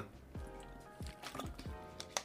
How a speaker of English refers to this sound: Let me take a sip of water real quick, 'cause my mouth is dry.